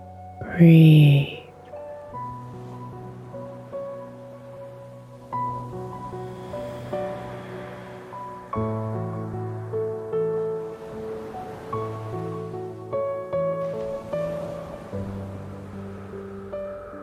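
Soft ocean waves wash in and out beneath calm, sustained ambient music, the surf a gentle, steady hiss that swells and recedes throughout, with a brief brighter chime near the start.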